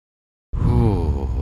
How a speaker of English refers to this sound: As I breathe into the mic, sorry about that. I'm breathing into your ear holes, and I'm not going to apologize for that.